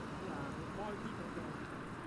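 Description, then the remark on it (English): A steady wash of road traffic rumbles continuously on a warm, sunny, breezy day, a dense low roar of passing vehicles with wind-like noise from the breeze mixed in, with no distinct single car standing out. “And there's a bit of a breeze, which is probably affecting the audio, and there's lots of traffic.”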